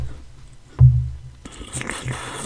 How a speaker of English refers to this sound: Here, let me get a quick sip of that.